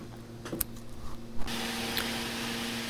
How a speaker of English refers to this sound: I hope you have enjoyed listening to this recording of the Neato Robotics robotic vacuum.